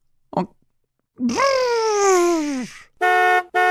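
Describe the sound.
A voice imitates a racing car as a sound effect for Drive to Survive: a brief sound, then a long humming vroom whose pitch slides slowly downward, followed by two steady, buzzy horn-like toots.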